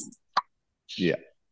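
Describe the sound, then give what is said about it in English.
A beer can cracks open with one sharp pop, followed a moment later by a brief vocal exclamation. “I prefer the crack of a can because it lets people know, hey, I've been productive today.”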